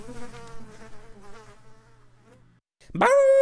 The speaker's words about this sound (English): I think I saw a Chinese beetle flying there, too.